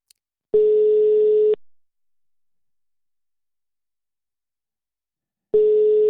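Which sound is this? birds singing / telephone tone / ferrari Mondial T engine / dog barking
telephone tone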